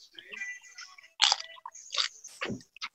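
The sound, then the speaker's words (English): Someone bites into a Tostito tortilla chip, giving several sharp, crackly crunches in an irregular rhythm, fairly loud, with faint background voices or music underneath. “I am having a Tostito.”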